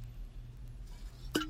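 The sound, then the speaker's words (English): A single sharp clink from a glass of water rings out near the end, a bright tap with a brief tonal ring, over a low steady background hum with no talking. “Excuse me, that's my water.”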